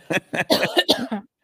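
A quick run of about six harsh, rasping coughs in close succession, close-up and fairly loud, with no talking around them.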